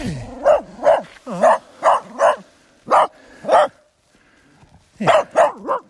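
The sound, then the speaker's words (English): A dachshund barks about ten times in quick, sharp, loud bursts as it comes to greet someone, falling into short clusters with a brief pause before a final volley of three. “Oh, good little wiener dog coming to greet me.”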